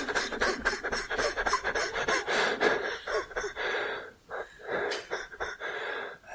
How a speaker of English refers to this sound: I just get this figured out, and then I go back to breathing in and out. But, okay, breathing out.